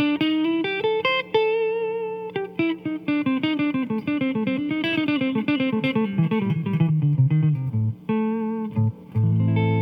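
A distorted electric guitar plays a fast pentatonic lead pattern in A minor, running up and down the scale with quick picked notes and a few sustained bends, loud with no talking.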